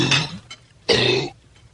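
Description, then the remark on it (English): A dog hacks and retches up a bone in two harsh, raspy bursts, a short one followed by a louder, longer heave that brings it up, with a brief quiet gap between them. “Oh, he's just yakking on a bone. He got it up.”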